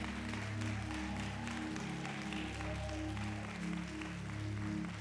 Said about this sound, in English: By the way, I want you to take a praise break. And thank God for the multimedia ministry. Go ahead, clap your hands in gratification for them.